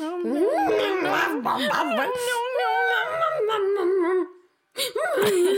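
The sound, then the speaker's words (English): A voice imitates a dog whimpering and howling, a long wavering, sobbing wail held loud for about four seconds, then a brief pause before the crying whine starts again. “Like that dog in Big Mouth. He's crying.”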